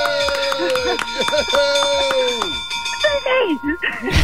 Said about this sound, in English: Should I hit the bell? Yeah, ring the bell.